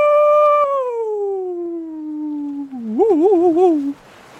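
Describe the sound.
A single person imitates a long wolf howl at the moon, a steady falling tone that ends in a wavering, yodel-like warble before cutting off, loud with no other talk. In a role-play story, the character Sventon howls at the moon at night.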